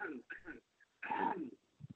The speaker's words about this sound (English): I have a cold, so excuse me. Once that, can I put you on pause for a second? Well, I'm gonna cough.